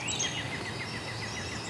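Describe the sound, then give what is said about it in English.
A northern parula sings a fast, high warble, a quick run of thin repeated notes over steady background hiss, with a few brighter squeaky notes near the start. “It's doing a very, very fast warble that accelerates to a squeak.”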